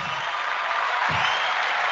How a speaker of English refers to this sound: No, I should get a cheer and applause behind that. An applause.